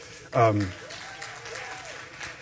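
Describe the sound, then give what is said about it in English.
Scattered audience applause forms a steady, noisy wash throughout, with a brief loud voiced shout or cheer rising over it near the start. “Those people who are clapping haven't gotten saved yet, but...”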